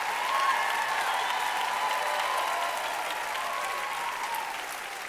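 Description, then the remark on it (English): A crowd applauds steadily for about five seconds, a dense wash of many hands clapping at an even loudness that eases slightly toward the end. No one speaks over it. “Come on, clap like it's a possibility.”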